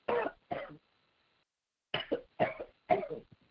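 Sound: coughing and throat clearing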